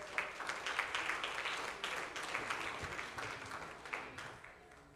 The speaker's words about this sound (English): In Jesus' name, and we clap our hands to the Lord.